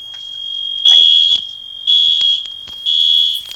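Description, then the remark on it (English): A fire alarm goes off, blaring loud and piercing in three pulsing bursts over a steady high-pitched tone, shrill, with no voices. “And that would be my fire alarm.”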